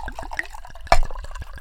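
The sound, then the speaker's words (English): A libation drink pours and gurgles into a glass, with soft splashing and one sharper clink or splash partway through; no one speaks. “We about to go ahead and pour up a little bit of libation.”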